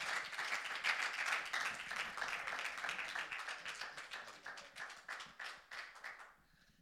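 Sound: audience clapping hands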